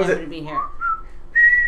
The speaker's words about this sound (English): That's my favorite whistle. Just kind of like, am I hearing whistling? And I was. So fantastic.